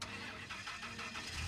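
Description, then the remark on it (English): A Silverado pickup truck engine cranks over with a rapid pulsing starter rhythm and catches into a low, steady rumble, fairly loud, with no voices. “loaded into the Silverado, and he started the engine.”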